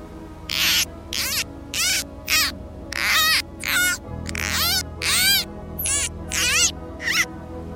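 A short new age commercial break bumper: about a dozen quick, squeaky dolphin-like chirps and whistles in a steady rhythm over a low, sustained synth drone, with no one talking.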